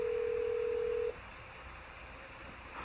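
A steady, clear telephone tone of a call to a car phone holds for about a second, then cuts off abruptly, leaving only a faint background hiss. No one speaks.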